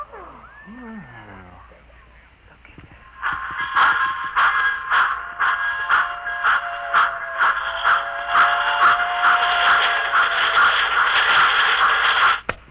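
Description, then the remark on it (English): A miniature model train, part of a complete model railroad the size of a cigar box inside a suitcase, runs steadily, its buzzing, whirring motor overlaid with regular clicking from the track, continuing for about nine seconds before stopping abruptly. A short falling squeal comes before it starts. “Hey, as you can see, I have in this suitcase a complete model railroad reduced to the size of a cigar box. Observe.”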